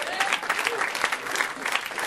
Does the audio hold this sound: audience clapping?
yes